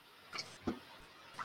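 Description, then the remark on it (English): Dice are rolled twice across a table in a few quick, sharp clicks spread over a second or so, fairly quiet, with no talking. “So, I didn't mean to roll it twice, to be honest.”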